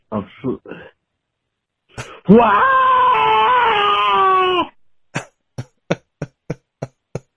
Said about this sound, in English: Good scream.